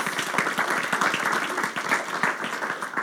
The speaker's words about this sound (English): Again, give yourselves a round of applause.